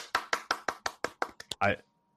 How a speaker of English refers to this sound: You can have applause or stars. Both. I heard applause.